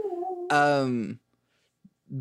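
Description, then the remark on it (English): A dog howls in a drawn-out, wavering wail that swells loudly and slides down in pitch, preceded by a softer steady tone and followed by a brief quieter call. “Badly transitioning, or I guess a dog howl into this next half of the podcast.”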